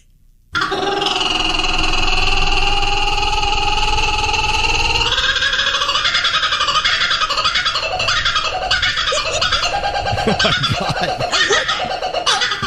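A kookaburra's loud, rolling laugh: a sustained rising trill that breaks into rapid, chattering hoots and cackles, growing more frantic and uneven toward the end, with no talking.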